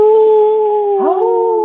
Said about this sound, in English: FedEx Field, 80,000 fans plus, right? Boom. First week. You hear howling.